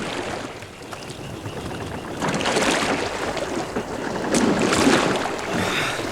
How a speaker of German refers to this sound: So beschloss man nach kurzer Diskussion, mit einem Boot zur Seeseite der Klinik zu fahren.